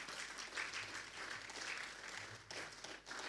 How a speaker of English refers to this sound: Oh, clap for yourselves. Clap for yourself.